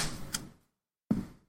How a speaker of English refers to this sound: I feel like we all clap differently, but the guy who does our sound is a master at this.